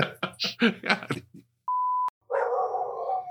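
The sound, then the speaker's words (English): Dogs fighting outside, among them a Rottweiler, bark in a rapid, rough volley, then a short electronic beep cuts in, followed by a sustained snarling whine from the dogs. The sounds are fairly loud, and no one speaks. “There's a dog bite outside.”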